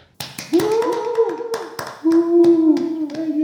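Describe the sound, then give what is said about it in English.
A round of applause sound effect taken from a sound clip site: a short burst of scattered hand claps mixed with sustained, tuneful cheering or whooping voices, fairly loud throughout and lasting a few seconds, with no speech. “Insert round of applause sound effect here.”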